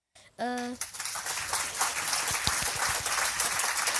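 A brief rising vocal cheer, then dense applause at Bridge Learning Campus school: many hands clapping in a steady, crackling wash that holds at an even, fairly loud level until the end.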